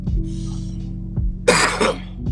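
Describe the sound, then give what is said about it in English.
A single harsh cough breaks out in two quick bursts over a steady low hum, with no talking around it. “All right, where's that cough coming from?”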